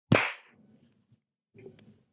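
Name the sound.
hand clap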